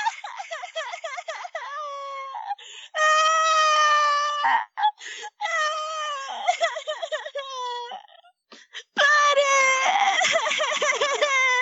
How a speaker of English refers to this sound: For a brief moment, they simply stare at each other dumbstruck until eventually Harley bursts into wailing tears.